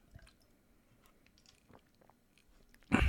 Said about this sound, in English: And hold on, I need a sip of water here.